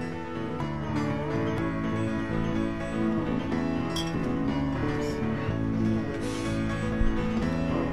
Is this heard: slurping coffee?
no